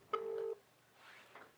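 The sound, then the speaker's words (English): A single short electronic phone ringing tone, steady and mid-pitched, as if from a speakerphone, lasting under half a second before fading into faint background room noise. “The phone's ringing.”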